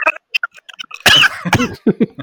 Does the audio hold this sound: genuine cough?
yes